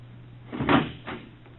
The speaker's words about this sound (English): What was that? The front door. My, he left without making his devoirs.